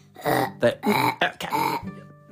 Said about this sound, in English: So please, could you stop burping so much?